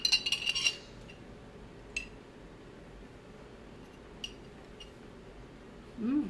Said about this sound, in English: All right, give it a stir. All right, cheers. Cheers.